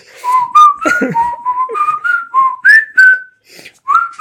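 Someone whistles a bouncy melody, a quick run of clear pitched notes sliding up and down with short gaps between phrases, no talking over it.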